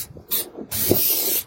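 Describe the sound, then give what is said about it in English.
Two hissing bursts from an aerosol spray paint can spraying paint on a car: a short puff, then a longer steady spray of about three-quarters of a second, fairly loud. “Spray paint in his dad's car.”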